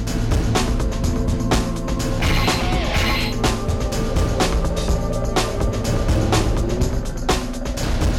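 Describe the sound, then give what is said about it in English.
Loud supercar engines roar continuously for the whole stretch, a dense steady drone of several supercars driving at 70 miles an hour within about a car length of each other, repeatedly overtaking one another, with brief clunks and bursts of noise scattered through it. “Yeah, 70 miles an hour, and just stay within like a car length of each other, and just keep overtaking each other one pass to the other, okay?”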